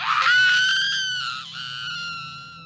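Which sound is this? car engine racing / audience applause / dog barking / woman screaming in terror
woman screaming in terror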